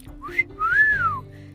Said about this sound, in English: Coach Hedge whistled.